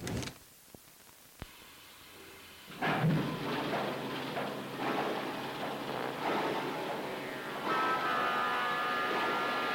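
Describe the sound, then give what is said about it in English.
After a few sharp clicks in near silence, a loud, steady rumble of a train rolling along the rails sets in, with a metallic squeal rising toward the end. “killing them off one by one, disguised in the costumes of the previous victims in Terror Train. All aboard.”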